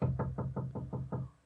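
A rapid series of about seven heavy knocks strikes a big iron door, each a deep, resonant metallic thud at an even, quick rhythm, fairly loud with no voices.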